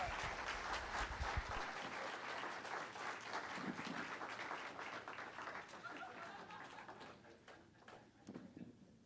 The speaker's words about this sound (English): Give them a clap.